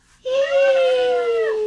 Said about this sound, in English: Close to dawn, you hear a high, piercing scream.